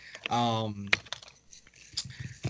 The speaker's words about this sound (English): what are you typing? Nothing. I can hear you.